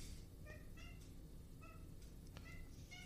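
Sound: cat crying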